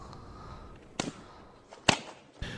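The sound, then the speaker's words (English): A woman slaps a man hard across the face: the slap rings out sharp, with two other smacking hits around it, the loudest in the middle, over a low background hiss with no talking. “Dude, she slapped his face hella fucking hard.”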